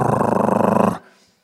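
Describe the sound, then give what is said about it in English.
A voice imitates the noise an older car's engine made while driving on the M4: a rough, growly rattle of rapid, even pulses lasting about a second, loud and steady, before it cuts off abruptly into near silence. “The other day I was driving on the M4 and my car engine started making this noise.”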